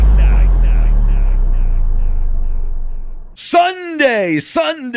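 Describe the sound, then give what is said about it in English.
A deep, roaring engine rumble fills the first few seconds and fades, then an excited, booming announcer voice shouts in short bursts, like an old monster truck racing commercial. “That's an old commercial when I was a kid for a monster truck racing.”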